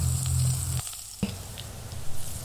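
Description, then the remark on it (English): Scrambled egg batter sizzles in a frying pan on a gas burner turned to low, a steady crackling hiss with a low hum underneath that briefly drops out, followed by a few soft clicks and pops. “Waiting for the bubbles, which were followed by the sizzle, and just a tad longer for the skin to start forming on the top, sort of like an omelet.”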